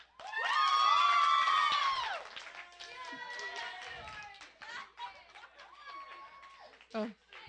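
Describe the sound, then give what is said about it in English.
A small audience bursts into loud, high cheers and whoops, then scattered, uneven clapping with bits of laughter carries on for several seconds before trailing off, as they clap to vote for the best cut-out heart. “If you think it's the best, clap.”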